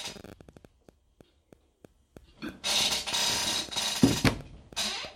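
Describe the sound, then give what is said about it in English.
A chair squeaks and creaks: a few sharp, evenly spaced clicks, then a loud, drawn-out scraping creak that swells and fades over several seconds. “And sorry about the squeaky chair and all the background noise.”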